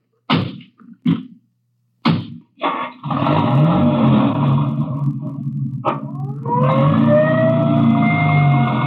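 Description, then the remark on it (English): A few sharp thuds like car doors slamming, then a loud ambulance siren wails and rises in pitch over a rumbling engine. “I'll ride back in the ambulance with the girl.”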